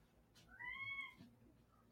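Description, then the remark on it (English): A cat lets out one drawn-out, wailing yowl that rises and falls like a crying baby, fairly faint against a low background hum, with no talking. “Ooh, screaming baby.”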